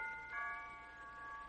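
A doorbell rings with a steady, sustained chime of several bright tones blended together, holding evenly for over a second at a fairly soft level, with no voices.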